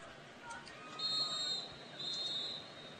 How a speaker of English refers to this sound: Whistle's blown. I don't know. Saying 12 men on the field for Lewisburg.